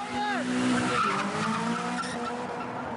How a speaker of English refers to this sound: Drifting is skidding the car sideways as you travel forwards. This leaves wavy tyre marks along the road.